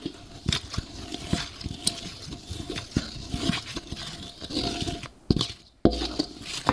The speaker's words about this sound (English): I'm just gonna briefly stir the flours together.